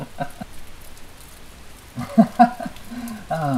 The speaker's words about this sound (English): Is that rain? Yes, I'm afraid it is. Quite lovely, isn't it? Is it? The rain? Yes. Yes, quite lovely. The rain makes such a lovely sound to those who're 6 feet underground.